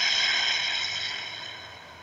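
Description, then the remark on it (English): A steady rush of air as a person breathes out through the mouth like through a straw after a deep breath in through the nose, holding level and then slowly fading over about two seconds, with no talking. “Take a deep breath in through your nose. Breathe out through your mouth like through a straw.”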